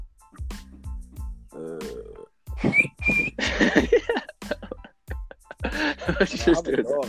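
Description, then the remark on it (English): A person gives a short, sharp whistle, like one used to call a dog, rising briefly among voices and laughter that continue around it. “The dog whistle.”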